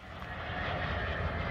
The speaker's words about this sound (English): Okay, that is the fourth time that same plane has flown overhead just like that. Here comes that same plane. This is like the seventh time.